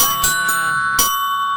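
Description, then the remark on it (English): A doorbell-style chime sound effect, triggered by accident, rings out with a bright, sustained electronic tone, punctuated by a few short clicks or strikes, and holds steady for about a second and a half with no talking. “That was like a doorbell.”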